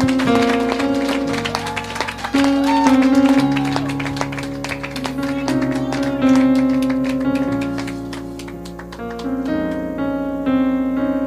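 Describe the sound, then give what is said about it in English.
A crowd claps steadily unto the Lord over sustained keyboard or organ chords, the dense hand claps blending into a continuous patter throughout, with no talking. “Give a clap unto the Lord.”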